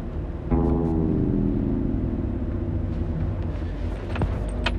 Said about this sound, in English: Okay, it's the 7th of January. Believe it or not, I'm in the car.